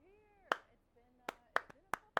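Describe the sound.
Sharp hand claps in a short rhythmic pattern: one clap, a pause, then a quicker syncopated run of several. A faint hummed or spoken voice drifts underneath at the start.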